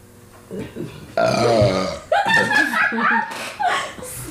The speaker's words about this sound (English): I'm like, sorry, audience. I have to burp.